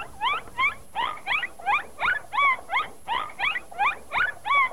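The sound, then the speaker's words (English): A rapid series of high, chirpy dolphin squeaks repeats in quick pulses, about a dozen bright upward-sweeping calls in steady rhythm, loud with no talking. “All right, the next one is more of a squeak sound that is also used.”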